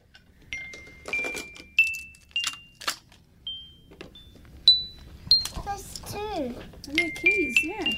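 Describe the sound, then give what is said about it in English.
A bunch of keys jingles and clinks in repeated shakes, with bright metallic rings hanging briefly after each jangle, while a voice babbles over the last few seconds. “Keys, yeah.”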